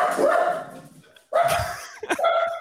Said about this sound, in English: Just dogs barking.